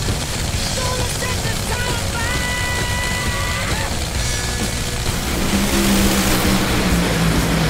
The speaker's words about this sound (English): Steve Torrence smokes the tires. McMillan trying to catch him, blows him up in the process, and Torrence wins the drag race. 4.273 seconds at 2:24. Torrence wins on a technical hole shot.